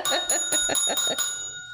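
A small bell rings close by in a quick run of about six bright strikes, each overlapping the last, before a shimmering tone lingers and fades on its own.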